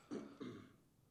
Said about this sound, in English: Sorry, I had to cough there.